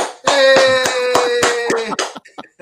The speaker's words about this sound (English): Let me do my clap that I do every podcast.